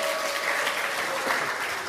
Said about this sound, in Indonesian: Tepuk tangan buat anak-anak budaya, anak-anak seni, anak-anak.